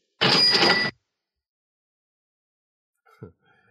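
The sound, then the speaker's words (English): A cash register rings out once, a loud bright chime over a rattling drawer that lasts under a second, followed by silence and a faint clunk near the end. “Where's my cash register when I need it?”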